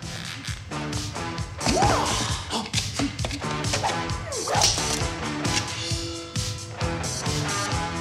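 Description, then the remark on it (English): Several arrows, shot by a martial arts master at a man who dodges them, whoosh and whip past amid sharp impacts, set against loud, continuous orchestral music that fills the whole scene. “All right, so everyone has a martial arts master who shoots arrows at him, right? So you learn how to dodge him.”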